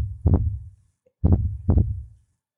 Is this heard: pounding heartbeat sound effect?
yes